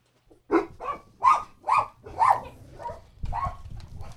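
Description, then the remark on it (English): A dog barks about seven times in a quick, uneven series of sharp, fairly loud yaps with short gaps between them, with no talking. “That's dog for get to the chopper.”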